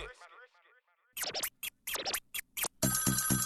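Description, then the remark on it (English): A custom ringtone plays on a brand new mobile phone as a call comes in: a short melodic phrase, then loud choppy bursts and a bright, steady ringing pattern, prominent amid a music track. “When a girl calls in with a custom tone and is ringing on your brand new phone.”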